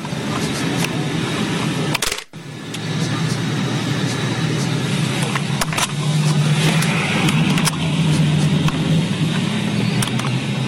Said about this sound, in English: The camera is in this person's car, and he's approaching the checkpoint.